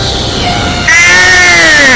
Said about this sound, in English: I'll knock the wax from your ears with me sonic scream.